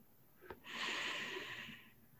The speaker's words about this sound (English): Breathing in. Breathing out.